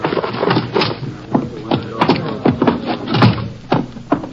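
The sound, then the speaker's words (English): A door is opened with a series of wooden clunks and rattles, mixed with shuffling movement and a couple of sharp knocks, as a heavy man is carried inside. “I'll get the door for you.”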